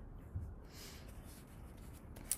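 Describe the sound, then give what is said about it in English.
Soft scratching of a pen moving across paper in short strokes, drawing a line of small hearts next to each other across the page, with one slightly sharper tap near the end. Quiet, with no talking. “Now let's make a line of hearts. Just little hearts next to each other, marching across the page.”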